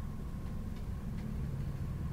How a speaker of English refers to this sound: He presses the very top button, and the elevator clanks and whirs for more than a minute.